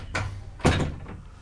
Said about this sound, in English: Do me a favor, turn around and close the door.